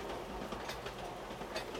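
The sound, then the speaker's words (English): Steady rumble of a Children's Railway train carriage, a line run entirely by kids aged 10 to 14 and operating since 1948, rolling along rails, with dense low-end noise and faint rhythmic clatter, heard from inside the car at moderate, constant loudness. “Are you enjoying the train ride?”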